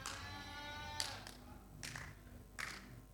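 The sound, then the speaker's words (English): Sparse, scattered handclaps from two people land in a few separate bursts, each with a short trailing smear. A drawn-out, buzzy tonal sound fills the first second before the claps start. “It's only two people are clapping.”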